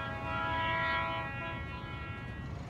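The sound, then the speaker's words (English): A train whistle sounds one long, steady, reedy tone that swells and then fades away after about a second, leaving a low rumbling background. “The train whistle sounds again, a little closer now, louder.”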